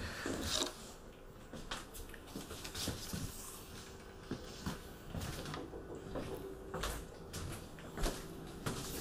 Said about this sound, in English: I'm just going to open up the door because the pooper is here, so the kitty cat might need to go to the pooper.